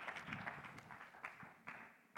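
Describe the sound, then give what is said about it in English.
An audience claps their hands unto the Lord in a steady, brisk rhythm during an evening prayer gathering, many overlapping claps blending into a continuous patter at moderate volume. “Oh, clap your hands unto the Lord tonight.”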